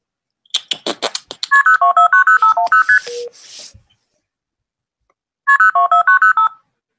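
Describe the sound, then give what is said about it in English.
A quick run of phone keypad tones follows a few sharp clicks and a burst of static; after a short pause, another rapid string of dialing beeps plays, loud, with no talking. “Come on, ring, ring, ring, ring, ring. Come on, phone.”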